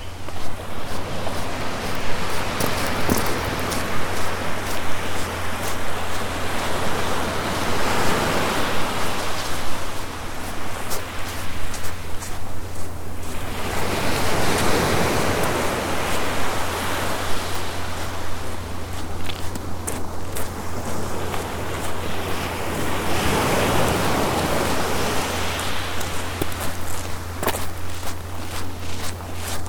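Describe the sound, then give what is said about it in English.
Waves break on a beach on the other side of a river in slow, rushing surges roughly every nine seconds, washing over a constant roar of surf, with crunching footsteps and a low rumble of wind. “I'm back on the beach on the other side of the river.”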